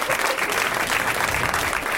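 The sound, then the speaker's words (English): Steady, sustained applause from an audience welcoming guests Tom Lennon, Steve Agee and Alia Shawkat, a dense wash of many hands clapping at once, loud, filling the whole moment without any voices standing out. “Way to milk the applause.”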